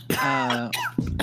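A single close, loud sneeze: a drawn-out voiced intake followed by a sharp breathy burst, with a couple of short breathy sounds trailing after it.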